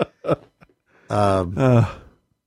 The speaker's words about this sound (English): I'm getting tired. Yeah, me too. I'm sorry. I try not to yawn right into the microphone like that, but.